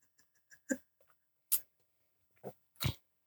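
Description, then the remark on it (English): A series of wet gulping swallows as a man drinks, four distinct big gulps at an uneven pace, fairly quiet, with faint lapping clicks between them and no talking. “That was a big gulp he had there.”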